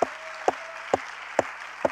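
An audience at a church service claps in unison to show it is ready for the word of the Lord, five sharp, evenly spaced claps in a steady beat, with a low hum and a faint sustained tone underneath and no talking.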